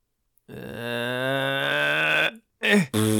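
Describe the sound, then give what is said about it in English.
A long, loud, buzzy fart noise made with the voice after a finger is pulled, drawn out for nearly two seconds, then followed by two short, sharp blasts. “It's the business that you gotta fart? I gotta do it and no one will pull this finger”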